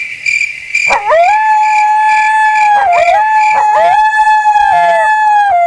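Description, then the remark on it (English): A coyote howls in long, wavering cries that rise and dip repeatedly, fairly loud, with a steady insect-like buzz running underneath throughout. “Yeah, but did you hear that? We picked up a coyote today.”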